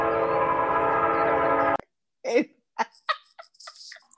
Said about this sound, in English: Like a train horn, like, brah, brah, like a train horn.